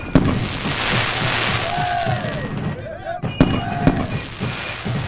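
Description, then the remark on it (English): Fireworks burst with a few sharp, loud bangs spread across several seconds, amid steady crackling and a descending whistle, while a crowd murmurs in the background. “Sure enough, 1 year after the Declaration was signed, Independence Day was celebrated with fireworks, even though the United States was still in the midst of the Revolutionary War.”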